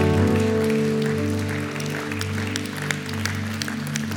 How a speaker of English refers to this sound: Go ahead, give God a hand clap of praise.